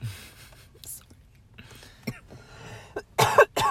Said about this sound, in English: I have to cough.